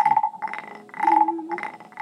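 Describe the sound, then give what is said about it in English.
A wooden toad instrument scraped in several quick, ratcheting passes, giving loud croaking rasps in a steady rhythm with brief gaps between strokes; no voices. “has a toad, a wooden toad next to her”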